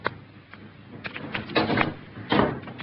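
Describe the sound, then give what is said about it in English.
A door is pulled shut with a rustle and a few light clicks, followed by a firmer thud and brief rattle as it settles. Fairly quiet, no voices. “You may go, Kate, and close the door.”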